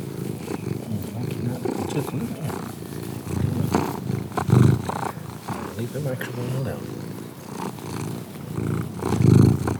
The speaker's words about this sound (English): Noisy for you, I know. The kitten just attacked the microphone. I think that she likes the idea that it's... Now, don't take this the wrong way or misunderstand, but it's got a dead kitten on the end of it. So she attacked the dead kitten.